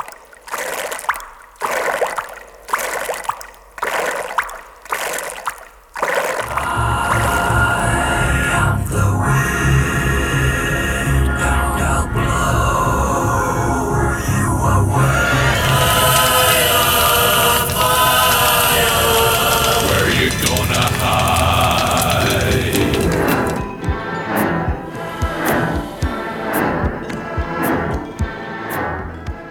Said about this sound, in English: And specifically the four elements of nature, isn't it? Exactly. Earth, air, fire and water. Yes, the four elements. And that's depicted in sound.